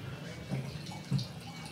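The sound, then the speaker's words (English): Wine, a Vigna di Milo from producer Salvo Fotis, trickles softly into a glass during an on-air weekly wine tasting in a brief, quiet pour, with a couple of gentle gurgling splashes and a faint murmur of voices in the background. “quickly tell me, first of all, pour yourself some more, and then quickly tell me what you brought in.”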